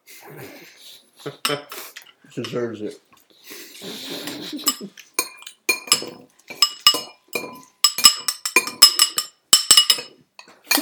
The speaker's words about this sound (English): Yeah, you want to stop slapping your bowl with your spoon?